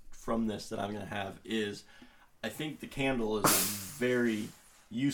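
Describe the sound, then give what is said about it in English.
A single sharp, breathy sneeze from the speaker's mother bursts out partway through, loud, cutting across a person who keeps talking steadily before and after it. “Sneezes happen.”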